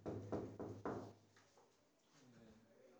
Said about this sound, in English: Climax, suspense. They knock on the door.